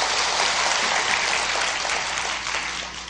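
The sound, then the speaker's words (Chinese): An audience applauds steadily for about three seconds, a dense crackling wash of many hands clapping at once, loud and even throughout with a slight fade near the end and no voices over it. “有去过的才能拍手，不去不能拍手哦。”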